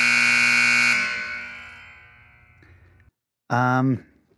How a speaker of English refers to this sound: Well, buzzer just about to go off. Perfect.